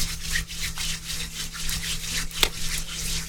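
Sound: hands rubbing together softly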